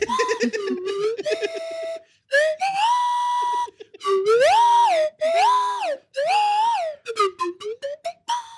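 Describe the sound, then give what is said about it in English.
A penny whistle plays a short, bright, loud melody of sustained notes with bending, sliding pitches, in several phrases separated by brief pauses, with no talking. “Then penny whistle.”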